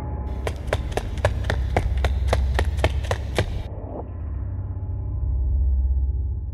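Roughly ten quick, crisp footsteps approach in a steady, fast rhythm over a low rumble, then stop abruptly, leaving only a quiet background hum.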